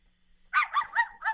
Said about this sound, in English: Oh, jeez. It's a barking dog.